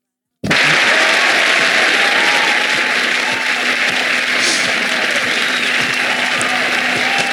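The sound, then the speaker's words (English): A crowd breaks into loud applause that starts abruptly and keeps up at a steady, dense roar of clapping through to the end, with no voices standing out. “Which one is the applause?”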